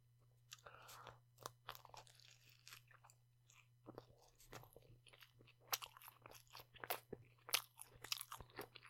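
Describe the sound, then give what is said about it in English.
Crunching and chewing of a sandwich, with a series of sharp, irregular bites and crackles over a steady low hum; no one speaks. “Let's just say I kind of wish this was that Dutch Crunch roll. It's not bad bread.”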